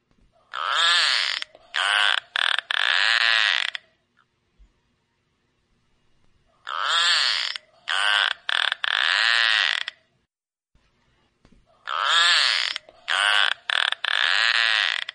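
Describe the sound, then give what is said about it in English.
Narwhal clicks and whistles: three bursts of loud, creaky pulsed calls with squealing, wavering tones, each broken into short segments and separated by silent pauses, with no talking. “I'll see if I can get a click and a whistle for you.”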